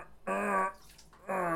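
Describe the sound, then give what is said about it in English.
Two short bursts of a liquid stream splashing into a toilet, the second starting after a brief pause. Both are fairly loud, with a hissy, watery quality and no talking. “When he's gotta pee, he's gotta pee.”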